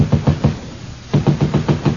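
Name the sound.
knocking on a wall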